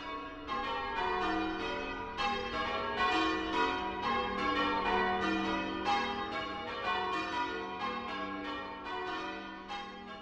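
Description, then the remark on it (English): Church bells ring in a steady, rapid succession of overlapping strikes, their tones blending into a continuous, resonant peal that carries on throughout without any voices. “I am nearly 62 years old and I've been ringing the bells for 50 years.”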